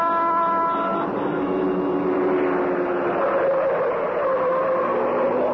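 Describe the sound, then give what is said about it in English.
The Green Hornet's car, the Black Beauty, roars steadily at high speed through city streets, its pitch sliding and whining as it races past, with a constant rushing drone and no voices. “Like a glittering black comet in the darkness, the car of the Green Hornet whipped through the city streets.”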